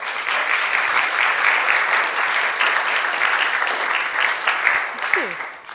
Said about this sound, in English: They're fantastic, aren't you? Do you want to give them a round of applause?